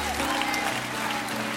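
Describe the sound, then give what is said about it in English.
An audience claps steadily, a dense, even wash of hand claps that holds at a fairly loud level throughout with no pause. “Would you clap your hands again real big?”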